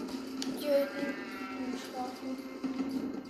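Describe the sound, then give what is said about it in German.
A sheep in a video game bleats in a wavering, drawn-out cry, followed by a shorter second bleat, set against a steady low hum and faint background noise. “Ich kümmere mich schon mal ein paar Schafe.”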